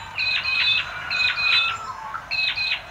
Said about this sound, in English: I love the sounds of mudlarks squeaking. Pee-wee, pee-wee.